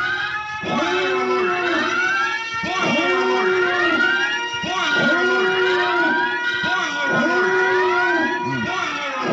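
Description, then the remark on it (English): A loud alarm sound effect used as a spoiler alert wails continuously, its rising-and-falling siren tone repeating in four even cycles roughly every two seconds, with a harsh, buzzy edge and no one talking. “You need to put the spoiler alert right now.”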